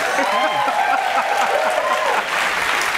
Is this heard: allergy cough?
no